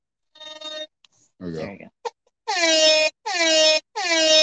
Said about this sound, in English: And I did find a soundboard. We'll see if it even works though. But it'll be fun to play with. You know, I got some things I can. What's the one I found that I liked? The air horn.